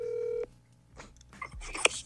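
A steady electronic tone from a cell phone cuts off, followed by quick beeps and clicks as a call is dialed, fairly quiet, ending in a brighter chirp.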